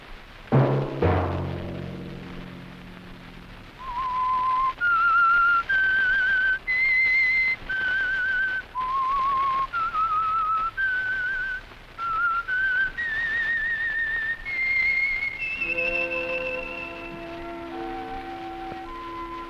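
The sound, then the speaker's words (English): A loud, clear whistled theme melody of the Signal Oil radio program The Whistler, with sustained notes that rise and fall, following a brief orchestral burst, and ending on held low tones beneath a final high note. No one speaks. “Let that whistle be your signal for the Signal Oil program, The Whistler, each Sunday night at this same time.”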